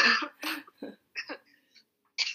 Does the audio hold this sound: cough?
yes